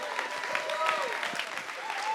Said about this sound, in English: So come on up and everyone just give a round of applause